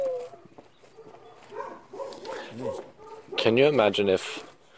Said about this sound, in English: Shut up, dog. And then there's the dog, which is not a nighttime creature. Or a daytime creature. It's a barking creature.